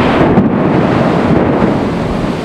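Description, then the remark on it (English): A loud, steady roar of heavy rain with a deep thunderous rumble underneath, continuous throughout, with no voices. “It sat out there in the rain by the patio.”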